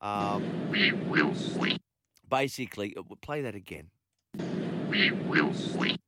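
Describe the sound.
Two loud bursts of a duck quacking sound effect, used for the Wood Duck of the Week award, one at the start and one at the end, with a short stretch of a voice speaking between them.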